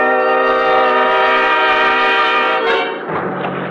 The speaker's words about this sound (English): Except for the stars far overhead, the night was black as ink, and the 50-horse outboard skimmed us along at better than 30 miles an hour.